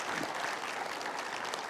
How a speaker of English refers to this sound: And today they're here, and I'd like for our folks to welcome them. Would you, with a round of applause? Thank you for being with us.